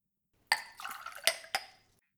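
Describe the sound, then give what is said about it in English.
A glass clinks sharply, then water from a water cooler gurgles into it for about a second, with two more bright clinks before the pour trails off. No one speaks. “I'll just help myself, shall I, from the cooler. Right. I'll get a glass.”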